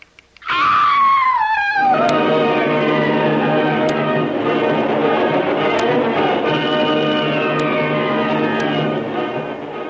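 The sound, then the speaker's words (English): A locked door in Doc Beard's plantation house creaks open slowly in one long, loud, groaning squeal whose pitch slides downward and then wavers, with faint regular ticks sounding about every two seconds underneath. “John stares wide-eyed with horror as the door she has so carefully locked opens slowly and stealthily before her unbelieving eyes.”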